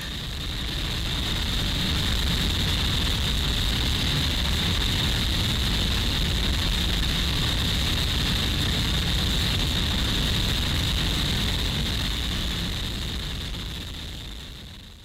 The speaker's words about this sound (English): It's 10 and a bit minutes long, and it ends with literally 6 full minutes of distorted noise. That's crackling, mental. Grinding, low frequency white noise. It is fucking mental.